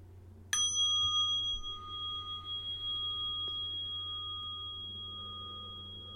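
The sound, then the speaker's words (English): A mindfulness bell is struck once, clear, its bright metallic tone ringing on and slowly fading over several seconds against a faint low hum. No one speaks. “So I'll invite the bell now just to breathe a little bit.”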